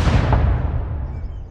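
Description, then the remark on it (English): A single heavy artillery cannon blast at a fair in a park, a deep, loud boom whose low rumble rolls on and slowly fades over a second or so, with no voices. “Upon finishing our food, we once again heard the artillery cannon blast.”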